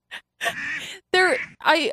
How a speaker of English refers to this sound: Yeah, I mean, hearing like constant duck sounds, like, whoa.